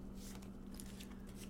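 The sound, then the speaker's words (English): Tarot cards being shuffled for a Virgo tarot reading, a soft run of quick papery riffles and flutters over a steady low hum, with no one speaking. “Take some deep breaths while I shuffle.”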